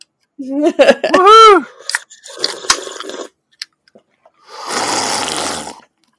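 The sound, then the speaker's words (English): A whooping voice and a few clinks and clicks, then a steady splashing rush of a NOS energy drink being poured out for about a second, fairly loud. “Did you pour one out for your homie? Yeah, and it's a NOS too, which is like his classic energy drink”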